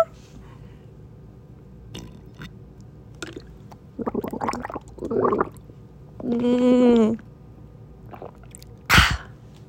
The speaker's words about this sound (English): But it's currently 12:20. I'm sitting in bed. And I'm sipping on some water.